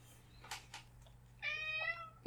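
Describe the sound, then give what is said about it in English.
A single drawn-out cat meow, clear, comes after a couple of brief rustling knocks as the cat opens a door, with a low steady hum underneath and no talking. “My asshole cat just opened the door and scared the crap out of me.”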